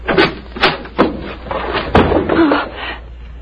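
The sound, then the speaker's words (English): A closet door in a small, shabby office opens with a series of wooden clunks and rattles, roughly four sharp knocks spread over a few seconds, with creaky scraping between them. “Open the door of this closet.”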